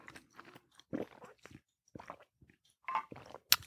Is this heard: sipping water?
yes